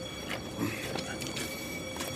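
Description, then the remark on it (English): A long, slow-moving train rolls past and swings round into a yard, pulling up next to a huge warehouse: a steady low rumble with soft, irregular clicks and clatter from the wheels and a thin, high metallic whine held above it throughout. “The train is now moving at a slow jog and swings its way round past me and into the yard beyond, pulling up next to a huge warehouse.”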